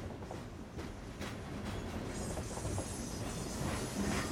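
A train rolls steadily along the tracks with a continuous low rumble and faint rhythmic clatter of wheels, a bright metallic hiss rising over it toward the end.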